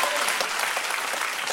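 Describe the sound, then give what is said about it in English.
Steady applause from a crowd of people, a dense, even patter of many hands clapping at once, loud and sustained throughout with no voices standing out. “Some people want to clap, some people don't.”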